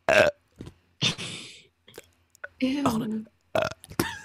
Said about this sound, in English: I'm gonna burp.